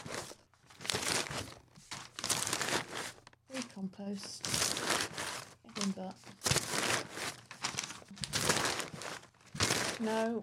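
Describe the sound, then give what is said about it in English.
Continuous crinkling and rustling of crumpled, torn-off pieces of paper being rummaged through in a bin in bursts, with a few brief spoken words breaking in between the noisy handling. “I was literally in the bin trying to find”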